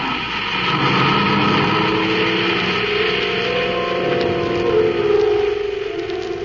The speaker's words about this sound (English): The reluctant Ropnar drives through the city to the spaceport. As the car glides through the gate